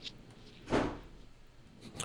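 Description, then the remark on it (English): A single heavy thud of a door slammed shut by the wind in a house, dull and booming with a short fading rumble, against a quiet background. “The door wind slammed in my house.”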